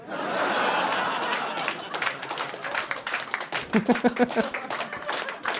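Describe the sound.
An audience breaks into a broad wash of applause, which thins into scattered, uneven individual claps, with a few laughs and voices mixed in toward the end.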